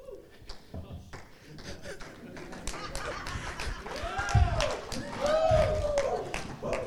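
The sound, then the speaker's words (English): A church crowd breaks into cheering and scattered clapping as someone moves a chair, building in volume with rising whoops and shouts over a steady patter of applause. “I've never seen anyone get such a cheer for moving a chair.”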